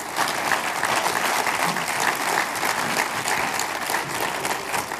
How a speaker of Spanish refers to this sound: Si le va ese aplauso al Señor, dáselo.